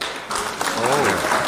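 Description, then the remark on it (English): A steady patter of clapping, like a small group applauding, fills the whole moment while a voice speaks over it. “Yeah, clap for you, baby. Clap for you. It's good to clap.”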